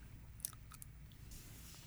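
Quiet chewing close to a microphone, with a few wet, crunchy clicks and smacks scattered over a couple of seconds, set against a low background rumble and no talking.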